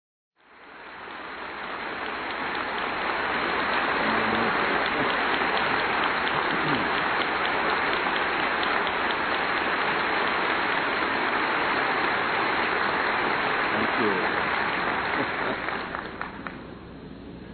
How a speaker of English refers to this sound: Thank you, sweet choir. They are applauding you